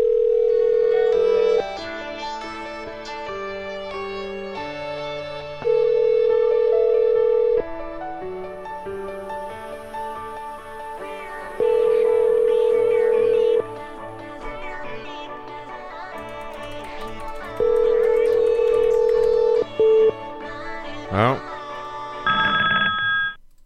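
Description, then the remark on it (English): A repeating electronic tone sounds in steady bursts, roughly every six seconds, as a forwarded phone call rings and tries to connect, with softer tonal sounds and faint voices filling the gaps. “I like that noise. Means it's trying to connect for me.”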